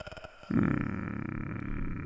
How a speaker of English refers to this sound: Bad move. I don't like that growling sound that's coming out of your dumb face. I don't like any of that.